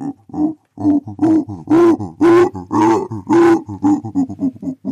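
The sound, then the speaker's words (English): A person imitates a howler monkey, voicing a series of deep, rhythmic grunting pulses that swell into louder, roaring bursts in the middle before tapering back to quicker grunts. “But howler monkeys have developed this trick to expand it.”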